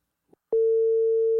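A steady, single-pitched telephone tone comes in after a faint click and holds loud and unbroken for about a second, with no voices present, while calling a phone number in Turkey.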